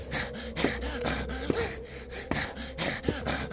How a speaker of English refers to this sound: Do you hear his breathing? Ragged as a consumption patient.